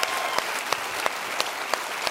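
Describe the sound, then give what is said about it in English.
A church crowd applauds steadily for the men and women at the God Behind Bars campuses, a dense wash of many hands clapping with a few sharper, louder claps standing out at regular intervals throughout. “And can we give the most gracious at all of our campuses round of applause for all the men and women at our God Behind Bars campuses?”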